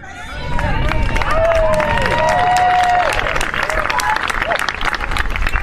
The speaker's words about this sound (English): That applause is White House staffers because it's out in front of the White House and they've got lawn chairs set up and it's the staff, like always happens, they start this wild applause